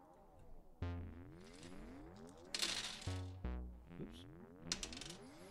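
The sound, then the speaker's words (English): A long run of clattering and rattling as a big handful of dice is rolled for initiative, tumbling and knocking together, with sharper bursts of clicks partway through and near the end. “That's a lot of dice. How many dice did he just roll?”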